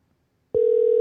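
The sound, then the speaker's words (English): After a brief silence, a loud, steady electronic telephone ring tone, a sound effect added to a phone call being placed to Receptra, starts abruptly and holds one unbroken pitch to the end. No one speaks. “Hey, man, it's got real ringing and everything. It's the sound effect I put in.”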